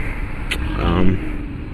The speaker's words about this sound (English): Someone has a diesel Jetta with a turbo, obviously. My dad has one, too. He just didn't tune it. But they put a nice exhaust or something on there and probably tuned it a lot. It sounds great.